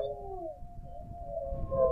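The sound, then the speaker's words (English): Long, wavering howls from several coyotes overlap, their pitches sliding slightly as they hold steady over a low, rumbling background, steady and fairly strong throughout. “Dylan was awakened by the sounds of coyotes howling.”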